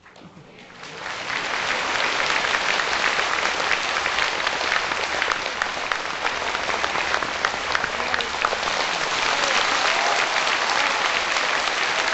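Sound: audience applause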